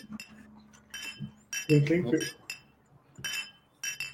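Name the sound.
drinking glasses clinking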